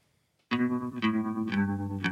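Music starts abruptly after a brief silence: the intro of a rock song cover version from a film soundtrack, a loud, effects-heavy guitar with a shimmering chorus tone playing a steady rhythmic pattern, accented strums landing about every half second, with no vocals.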